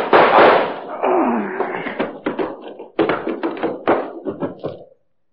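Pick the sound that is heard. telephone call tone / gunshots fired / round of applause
gunshots fired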